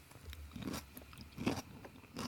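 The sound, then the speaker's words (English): Crunchy chewing of food, with several moist, crackling bites in an uneven rhythm, the loudest crunch near the middle, heard alone without talking. “Oh, well, now it's sounding real crunchy.”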